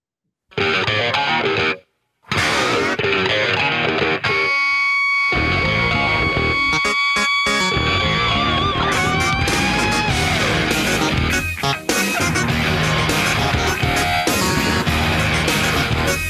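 A loud, distorted 1993 rock song with grinding electric guitar, clavinet and pounding drums, briefly cutting out twice near the start before charging on at full volume with squealing guitar lines.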